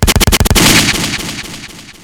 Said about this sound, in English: Oh, gunshots.